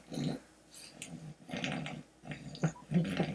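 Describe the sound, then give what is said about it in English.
A person, acting like a pig as a dare in a game of truth or dare, makes a run of rough, throaty grunts and snorts in uneven bursts, fairly loud and growly, with short breathy gaps between them and no talking. “Act like a pig until it is your turn again.”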